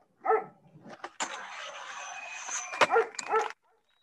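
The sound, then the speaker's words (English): A dog on a skateboard gives a few short, sharp barks, one at the start and a couple more near the end, over a steady rolling, scraping noise in between. No one speaks. “Cooler than a dog on a skateboard.”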